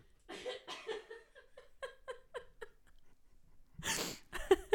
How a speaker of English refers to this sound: I'm just going to cough for a second.